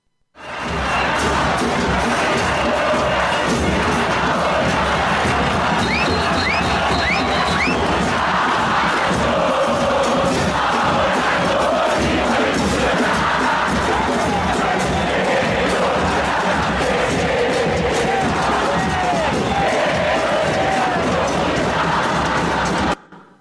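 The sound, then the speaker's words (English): A massive outdoor crowd of about 4 million people fills the streets of Buenos Aires, Argentina, at a victory celebration parade. It roars continuously, singing, chanting and cheering, the voices blending into a dense, loud wall of sound that never lets up. “In the end, 4 million people took to the streets of Buenos Aires to celebrate their victory. And what did the crowds do as they gathered? Well, they sang.”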